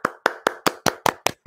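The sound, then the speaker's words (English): Sharp hand claps in a steady, even rhythm, about eight of them in quick succession, bright and crisp with no talking over them. “Let's all clap.”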